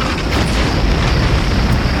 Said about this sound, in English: Then, a collection of explosions from the north.